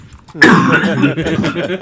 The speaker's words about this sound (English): once … is done coughing